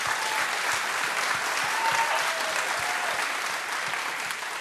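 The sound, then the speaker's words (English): Steady audience applause at a church for a staff member who oversees its global missions effort. A dense wash of many hands clapping at an even loudness fills the whole stretch, easing slightly at the very end. “She oversees our whole global missions effort, which is huge, and she should be applauded for that on cue right now.”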